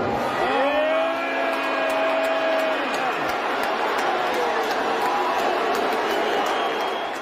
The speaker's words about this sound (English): thousands and thousands of people booing Elon